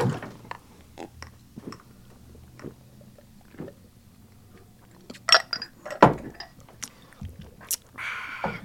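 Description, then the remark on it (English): Two glasses of Flaming Dr. Pepper drinks clink together in a toast, a few sharp bright taps mixed with scattered knocks and rustling handling noise, with no one speaking. “That is two Flaming Dr. Peppers.”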